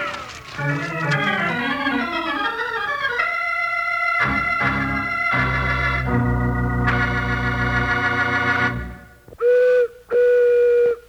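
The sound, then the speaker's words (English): A booming prairie chicken call: a long run of wavering, whistle-like hooting tones that shift in pitch, ending with two short, loud blasts, with no talking. “They call that the booming call of the prairie chicken.”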